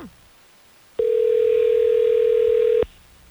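A single loud, steady electronic ringback tone of a phone call placed by hosts of the radio station Hot 101.5, ringing out for about two seconds and then cutting off cleanly, with no talking over it.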